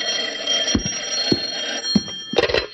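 A telephone bell rings steadily and fairly loud, a bright metallic jangle sustained across the whole moment, with a few soft thumps underneath and no voices.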